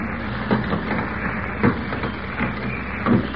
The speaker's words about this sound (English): As we join them now, Kent is just opening the front door of the theater with a key he has somehow managed to obtain. Listen.